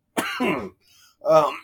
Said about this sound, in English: Okay, so I believe my computer audio is still picking up everything because I definitely just saw that cough come through.